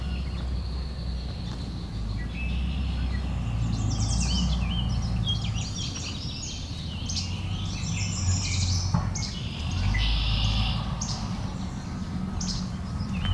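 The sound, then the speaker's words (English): Busy, overlapping red-winged blackbird calls and harsh chatters fill the air, several birds squabbling over a steady low rumble of wind or background noise, with no one talking. “Red-winged blackbird's having an argument here.”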